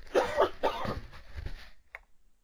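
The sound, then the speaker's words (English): A person coughs in a series of harsh bursts, about three or four in quick succession, loud and raspy, followed by a short throat-clearing sound as it trails off. “I have to cough.”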